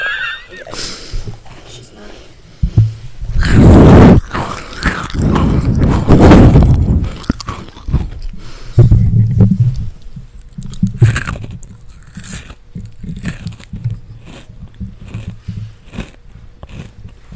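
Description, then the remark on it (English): A crunchy breadstick is bitten for an ASMR recording with loud, crackling snaps, then chewed in a run of smaller, irregular crunches that gradually soften toward the end. “That one was crunchy.”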